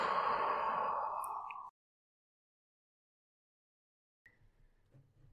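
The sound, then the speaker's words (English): A deep, slow breath: a long, loud, airy exhale like a sigh, a few seconds of silence, then a faint, softer inhale starting. No talking. “Inhaling and exhaling.”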